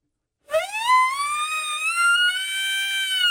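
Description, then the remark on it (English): An elk bugle call: one loud, sustained whistling note that slides upward in pitch and then holds steady and shrill for about three seconds, with no talking over it. “Hey, Donovan, I got the elk bugle going, Donovan.”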